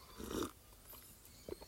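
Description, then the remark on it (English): A brief, quiet slurping sip of hot coffee, followed by a short hush and a couple of faint clicks, soft, with no talking. “I can't help but drink the coffee now.”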